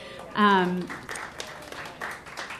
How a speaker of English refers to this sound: And I have to thank our sound guy back there. Everybody clap.